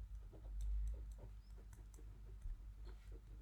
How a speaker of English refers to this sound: I'll write. Bear with us, listener. And you can hear this is... I'm typing mine out on my phone.